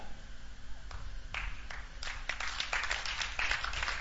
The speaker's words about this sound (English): Those who are clapping, you are getting it.